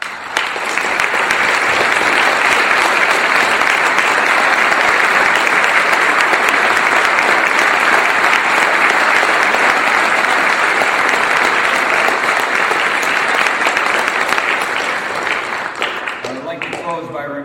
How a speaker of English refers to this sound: and I'd like to personally thank both our debaters, and I wish they would stand and receive your applause.